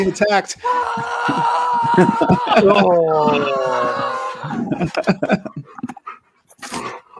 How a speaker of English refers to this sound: Ooh, who's a good dog?